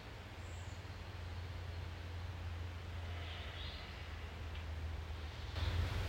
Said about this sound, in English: I'm grateful for the sound of the river.